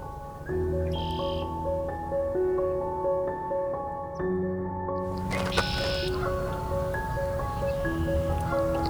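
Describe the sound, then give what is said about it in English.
Red-winged blackbird calls ring out up close, two loud buzzy bursts standing out over a steady bed of lower droning, honking bird sounds, including Canada geese, with no talking. “And close up on a red-winged blackbird.”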